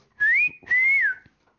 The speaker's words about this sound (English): Go on, then, give me the whistle. You can't whistle while smiling. It's because I'm right next to... I'm right up on it.